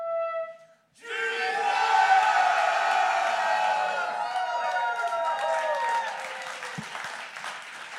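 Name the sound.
audience shouting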